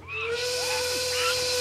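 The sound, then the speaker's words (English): Shrill whistling carries a steady held tone with a few short gliding pitch slides, sounding over a constant breathy hiss with no talking. “Can't you whistle or something?”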